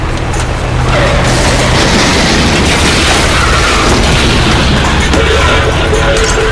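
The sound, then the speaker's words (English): A car smashes through a wall of parked cars: a loud, sustained roar of crashing metal and booming impacts filling several seconds, with an engine rumbling underneath. “going through the wall of cars.”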